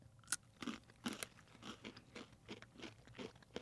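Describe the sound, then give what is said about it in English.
Crisp crunching of a long, thin pretzel stick, about 4 to 5 inches long, thinner than a typical pretzel stick and without big chunks of salt, with about eight sharp bites and chews in a steady rhythm, loud with no talking. “Tastes like a crunchy. Pretzel stick.”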